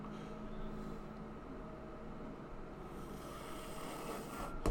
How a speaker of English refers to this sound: I think it even happens with my vape. Like, watch me do this.